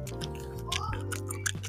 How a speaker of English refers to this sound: I'll go ahead and make some trigger for you guys. Don't worry. Here's a little bit of gum chewing.